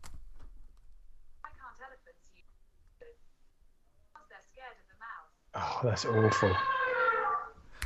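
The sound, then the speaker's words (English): Quiet murmured voices, then a loud, brassy elephant trumpet, played by Google Assistant after it is asked for a joke, blares from a phone speaker for about two seconds, rough and strongly harmonic, before cutting off. “Dude, did that elephant noise come out of your iPad?”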